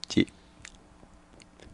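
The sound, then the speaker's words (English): A short, loud, low belch made directly into the microphone erupts right at the start, then gives way to quiet with a few faint clicks and rustles. “I'm going to go ahead and say that might be the first belch where someone's actively belched into the microphone on the show.”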